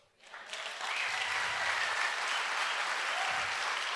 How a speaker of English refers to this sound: Wait. You're clapping.